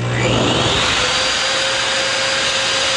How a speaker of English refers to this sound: The hand dryer.